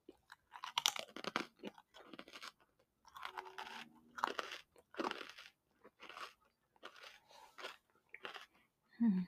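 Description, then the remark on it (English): Crisp crunching as crunchy food is bitten and chewed, with repeated sharp bites and grinding chews in irregular bursts across the whole stretch, loud, including one big crunch as a whole chunk falls off. “Did you hear that big crunch there? A whole piece, a whole chunk fell off.”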